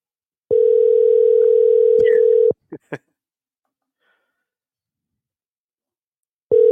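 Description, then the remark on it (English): Outgoing phone call ringing: a steady, low-pitched ringback tone hums for about two seconds, a couple of soft clicks follow, then silence before the next ring begins. “We were betting if you'd answer the phone or not.”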